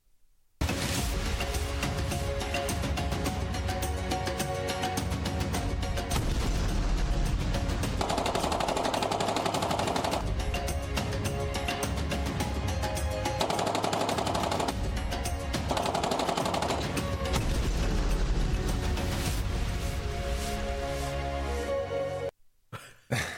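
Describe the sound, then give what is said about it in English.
Loud, dense gunfire and explosions blast almost nonstop for about twenty seconds, layered over a droning, musical backdrop, as a bumper introducing an Africa news segment, then cut off abruptly. No one speaks. “Africa news today. Explosions, gunfire, beautiful scenery.”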